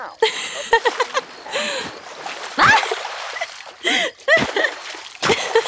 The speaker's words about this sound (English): splash fight